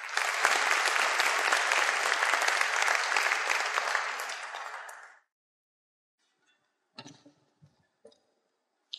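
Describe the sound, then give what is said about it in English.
A crowd at a service applauds steadily for about five seconds as a family comes up to offer the final prayer, a dense wash of clapping that cuts off abruptly, followed by near silence with a few faint clicks and small bumps. “Please give them a round of applause, folks.”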